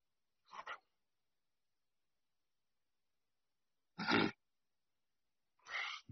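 Three sharp, isolated gasping breaths of agonal respiration, irregularly spaced with long silences between them, the first fainter and the last two louder and harsher, heard alone without any talking.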